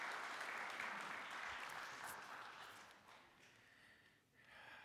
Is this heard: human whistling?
no